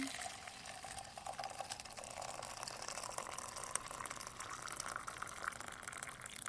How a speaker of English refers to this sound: Now we will pour in water. So this one is fermented, the developed oolong tea.